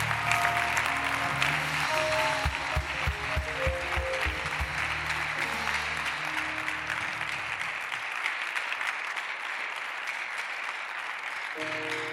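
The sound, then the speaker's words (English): A large audience claps loudly and continuously, a dense wash of applause with music or sustained tones underneath in the first half, thinning into steady clapping toward the end. “In the name of Jesus, anybody clapping, the thing is upon you.”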